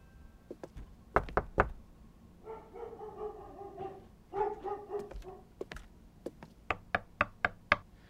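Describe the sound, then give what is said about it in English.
Sharp knocks on an apartment door come in a quick burst, then a dog barks and whines behind it, followed by a steady run of five or six louder knocks. “Is your plan just to knock on every door until we find them?”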